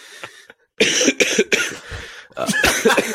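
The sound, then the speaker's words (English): A person coughs several times in quick succession, loud, the harsh bursts clustering together with a brief pause before a final rough cough. “He said this perfectly timed cough.”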